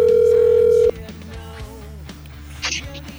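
A loud, steady telephone ringback tone sounds once for just under a second, then cuts off as voices and background sound take over.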